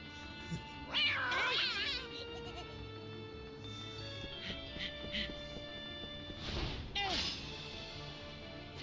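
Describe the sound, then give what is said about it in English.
A cat in a fight yowls loudly in a drawn-out, wavering cry near the start, then lets out a second shorter yowl near the end, with a dull crash just before it over a steady background hum. “That was pretty dumb of the cat.”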